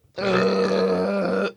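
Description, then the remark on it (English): A single loud, sustained burp lasting over a second, deep and throaty with a steady rumbling tone, with no talking. “Since then, I've built up to this moment right here where I'm going to burp now.”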